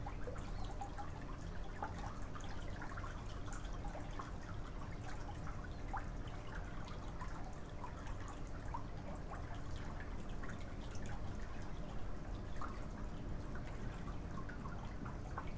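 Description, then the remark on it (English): Rainwater drips and trickles steadily, scattered drops landing over a soft, continuous wash of water. The sound stays quiet and even throughout, with no voices. “Just for a moment, feel how the rain water from above, crystalline rainwater, rains down on you from above and blesses you”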